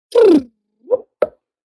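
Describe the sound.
A voice imitates a humpback whale's whoop call, a call humpback whales worldwide produce: a loud, brief voiced sweep that slides down in pitch, followed by two shorter, softer grunting pops.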